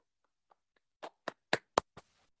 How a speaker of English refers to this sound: Four claps.